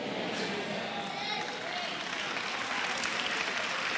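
An audience claps for the Lord in a steady, dense patter that holds at an even level for about four seconds, a modest, unenthusiastic round of applause.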